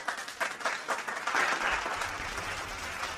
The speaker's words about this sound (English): Round of applause. Come on! Come on! I want to hear you clap. Clap, clap. Let's make it clap, clap.